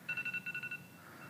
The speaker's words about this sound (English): It's about time to pray. Thanks for the reminder, phone.